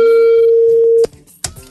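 A loud, steady telephone line tone hums for about a second, then cuts off abruptly, followed by faint line noise and a brief click-like burst.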